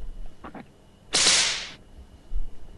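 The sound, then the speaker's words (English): A single sharp whip crack snaps out loudly, a bright burst with a brief hissing tail, preceded by a couple of faint soft taps in an otherwise quiet space. “That was a whip.”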